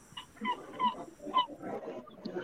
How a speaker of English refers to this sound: The seagull is trying to add something. It gives character. It's fine. It tells us. It tells the listener. We are into this multi-species ecology. Yes. And so we acknowledge the seagull as well. In a port city in Tallinn, Estonia.